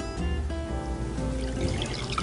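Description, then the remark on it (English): A double, 4-ounce pour of whiskey goes steadily into a glass for a couple of seconds, a continuous gurgling trickle whose pitch rises as the glass fills. No one speaks. “Since we're making this a double, we're going to make this a nice big 4-ouncer. I'm going to pour that over the top like that.”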